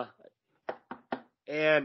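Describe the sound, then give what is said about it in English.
Three quick knocks of knuckles on wood in an even rhythm, with a voice talking just before and right after them. “Yeah, going wood at near you, knock on wood.”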